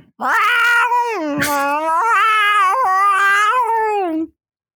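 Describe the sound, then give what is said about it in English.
A person loudly imitates a cat's scream in one sustained, wavering yowl lasting about four seconds, rising and falling in pitch with a raspy break midway. “What does a cat scream sound like?”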